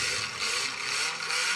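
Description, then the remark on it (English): A car engine runs with a steady, loud whirring roar, holding an even level throughout with no speech over it. “It sounds like a nice sports car.”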